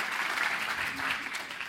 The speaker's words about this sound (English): Well, can we give a round of applause for our participants? Wonderful.